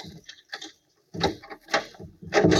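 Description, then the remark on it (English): A door is unlocked and opened, with a few sharp mechanical clicks and rattles from the lock, a brief pause, then louder clunks and scraping as the door swings. “Now, open up the door.”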